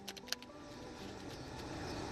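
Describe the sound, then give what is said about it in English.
Tarot cards being shuffled: a few quick, crisp snaps at the start give way to a steady, soft papery rustle. It's quiet, with no voices. “I'm shuffling now, and I will take the three cards off the top to kind of give me an idea of the storyline that may be going on behind the Silkie and her skin.”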